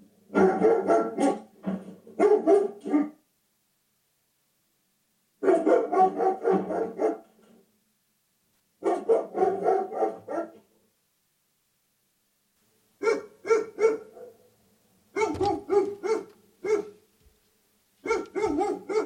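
A dog barks loudly and aggressively in repeated bursts, several rapid barks per volley, each volley followed by a brief silence, played from a studio smart speaker as a Burglar Deterrent routine triggered by motion at the front door. The pattern continues steadily throughout, with no talking.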